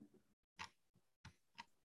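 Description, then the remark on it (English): Several quick, faint computer mouse clicks while navigating in Spotify, in an uneven rhythm, each a short crisp tick with a soft rustle between them, with no talking. “Clicky clicky. I'm sure they can hear me clicking.”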